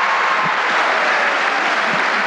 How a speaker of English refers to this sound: The show is filming in a huge auditorium. In the video of this event, you can see that everyone is all smiles and cheering, like they're at a rock concert.